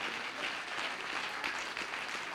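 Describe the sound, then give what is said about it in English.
A standing crowd gives God a hand clap, applauding steadily, many hands clapping in a dense, continuous patter that stays loud and even throughout, with no voices standing out. “Give God a hand clap for because you know the resurrection power.”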